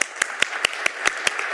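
A church audience applauds as a helper comes out for a quiz. About eight sharp, evenly spaced claps stand out over a steady wash of noise, keeping a quick, regular rhythm throughout.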